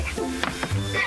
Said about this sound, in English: Bless you.